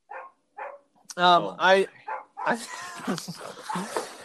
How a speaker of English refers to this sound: Oh man, we got some dogs barking in the back. Who is that? Dude, it's Chewy. He's such an annoying dog.